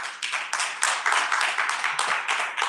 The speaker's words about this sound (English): God's been good to you. Give God another hand clap of praise this Sunday morning.